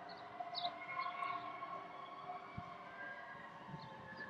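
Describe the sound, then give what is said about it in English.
An emergency siren wails as it passes outside, its steady tones layered over a low traffic rumble, with no one talking. “There's been a lot more of those happening. What's going on?”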